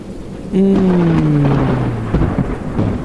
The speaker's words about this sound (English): And then a storm rolls in. And you know what? It's warm out. So we like the storm. I just got a good sweat. So this storm feels good to me.